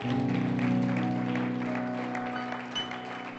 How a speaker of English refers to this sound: Can you give the Lord a hand clap as you're seated this morning?